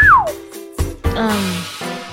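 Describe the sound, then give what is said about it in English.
A whistle sounds a quick, clear, high tone that slides downward, followed by a couple of dull thuds and a longer, humming tonal sound. No one speaks. “So, what is that with a whistle for?”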